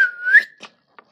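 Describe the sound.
A person whistles a short birdlike call: one sustained, rising tone followed by two quick, faint chirps, fairly loud, with no talking.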